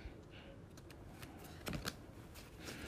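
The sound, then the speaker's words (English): Quiet shuffling of a new, unused tarot card deck: a steady run of soft papery flicks and rustles, with a couple of sharper snaps near the middle, and no voices. “I've just been shuffling them and bonding with them.”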